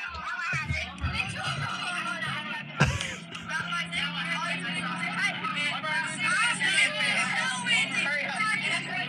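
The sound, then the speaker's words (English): Loud, continuous bus interior noise: a steady low engine rumble with rattling and road roar, overlapping chatter from passengers, and a sharp thump partway through. “It's a really loud, obnoxious video because it's a bus ride.”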